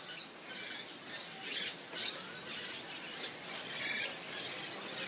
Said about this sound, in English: Wow, you can hear all the birds going nuts. Listen.